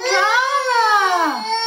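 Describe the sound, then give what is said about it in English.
A toddler having a tantrum, recorded on a video, wails in one loud, sustained cry that rises slightly in pitch, holds, then drops off near the end, strained and tearful with no words. “Oh my God, you can actually hear the tantrum happening.”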